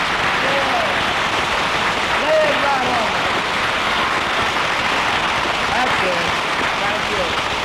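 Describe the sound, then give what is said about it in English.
Steady, sustained applause from a studio audience, a dense wash of clapping that holds at an even, fairly loud level throughout without pausing, with faint voices mixed in. “Lay that applause on him.”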